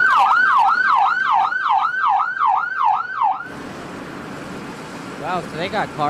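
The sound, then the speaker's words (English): A tribal fire department rescue vehicle's siren wails loudly in fast, rising-and-falling sweeps for several seconds, then cuts to rough road noise before a few shorter siren chirps return. “Yep, tribal fire department, too. Or fire rescue.”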